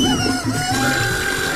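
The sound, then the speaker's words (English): A loud, sustained horn blast holds a steady, brassy tone with rich harmonics for nearly two seconds, continuous, with no talking over it. “He's got his morning horn.”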